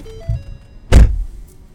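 Someone climbs back into a car stopped in front of a house with a chain link fence on a street in North Miami, and a door shuts with a single heavy thunk, followed by a low interior rumble and faint rustling; no one speaks.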